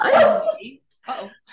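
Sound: dog barking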